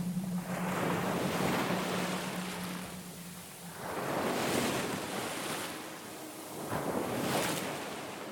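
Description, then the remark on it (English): Ocean waves roll in and break on the shore in three broad, hissing surges, each swelling and then washing back, with a steady windy roar filling the gaps between them. “they spend the rest of their life just sitting on the cliffside watching the waves.”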